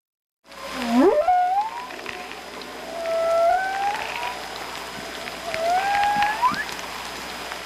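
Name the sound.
whale song underwater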